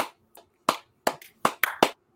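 A brief, sparse round of applause: about seven sharp, bright hand claps in an uneven rhythm, as if from just a few people, with no talking over them.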